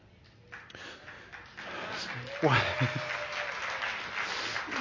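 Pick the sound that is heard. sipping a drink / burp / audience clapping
audience clapping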